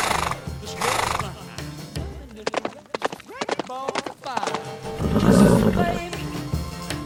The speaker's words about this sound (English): Not that horse again. I'm too tired to deal with a fucking horse.